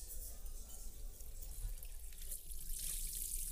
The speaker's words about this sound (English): I actually like washing dishes. Don't get me wrong, I prefer a dishwasher any day of the week. But when I do have to stand there at the sink, carefully washing my mom's fancy wedding china by hand, there's something about the rhythm of it that feels